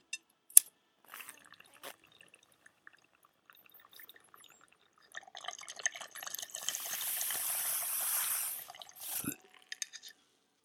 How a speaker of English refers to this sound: We will just smoke out of this bong that's already packed. Haha. Always staying ready.